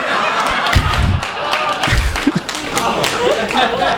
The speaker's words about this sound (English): It's very, very funny and very dirty. An applause for a very dirty song from the lady in the back.